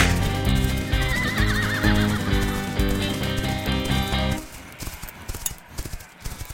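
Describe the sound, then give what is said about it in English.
A horse gives a long, loud whinny with a shaky, wavering pitch, then hooves clip-clop in a quick, uneven rhythm as the neighing falls away. “There they go off into the sunset. Riding off.”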